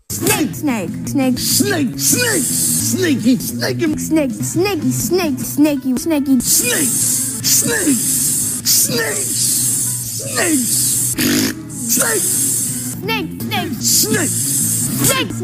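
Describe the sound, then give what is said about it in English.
A voice mimics a snake's hiss with repeated sharp, breathy hissing bursts, loud, mixed with voiced talk-like sounds and steady background noise throughout. “Snake. Yeah, you know these snakes.”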